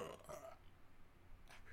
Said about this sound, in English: What was that? I burped.